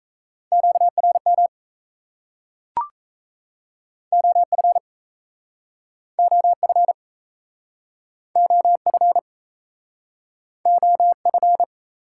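Fast Morse code tones sent at 28 words per minute: a steady single-pitched beep keyed in quick dits and dahs, arriving in five short bursts separated by silent pauses, with one sharp click early on.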